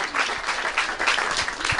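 A crowd applauds steadily, many hands clapping together in a dense, continuous patter at fairly strong volume for just under two seconds, with no voices standing out.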